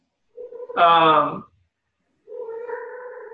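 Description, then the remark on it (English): A cat meows twice, fairly loud: first a strained, rising yowl, then after a short pause a longer, steadier meow. No one speaks. “My cat, this cat's just having a fucking field day.”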